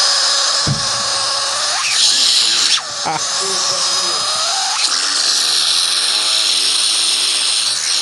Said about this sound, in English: We're currently listening to a dick being gobbled up by a Dyson vacuum. Well, is it technically a Dyson?